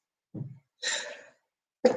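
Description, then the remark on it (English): A loud sneeze: a short low intake of breath, then a sharp breathy burst, followed by another sudden burst starting at the very end. No talking. “what I'm going to do right now is sneeze.”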